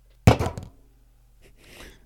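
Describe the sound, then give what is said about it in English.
A voice imitates a car door shutting: one sharp, punchy thunk that dies away within half a second, then a softer, breathy rustle trailing after a brief pause. “Shutting a car door.”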